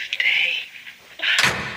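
A door shuts with a sharp thud about halfway through, preceded by brief scraping and shuffling movement.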